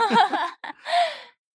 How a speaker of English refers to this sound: If you hear that in the background, that's a snoring. I'm sorry. It's my puppy. It's not us falling asleep.